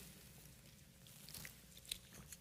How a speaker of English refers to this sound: Get your phone adjusted, your Bible adjusted. And I can have a sip of water while you do that.